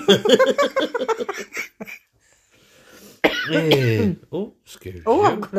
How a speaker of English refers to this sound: I'm gonna cough.